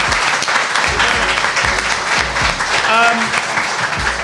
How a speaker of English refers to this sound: Appreciate your time, and we should give them a round of applause as well